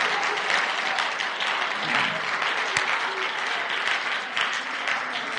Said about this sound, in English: Somebody give the Lord a hand clap of praise tonight.